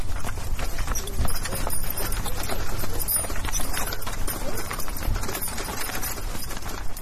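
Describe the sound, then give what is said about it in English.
Hooves of a horse-drawn post-chaise clip-clop in a steady, continuous rhythm as it draws up at Atterbury Hall, Lincolnshire, in a dramatized reading of M.R. James's Lost Hearts, fairly loud against a low rumbling background, with a faint voice audible beneath. “It was in September of the year 1811 that a post-chaise drew up before the door of Atterbury Hall, in the heart of Lincolnshire.”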